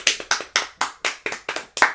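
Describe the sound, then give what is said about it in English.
Steady, rhythmic hand clapping welcoming a live, in-person guest: about eight sharp, crisp claps in two seconds, evenly spaced like a small round of applause, with no voices over it. “Round of applause.”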